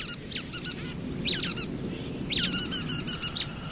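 Nuthatch calls: quick clusters of short, nasal, squeaky notes, repeated in three bursts, clear over a low steady background rumble.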